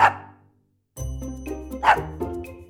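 A dog, Luna, barks twice, loud, with a short silence before the second bark. A low, steady tonal hum sits underneath the second bark.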